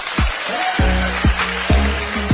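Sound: audience clapping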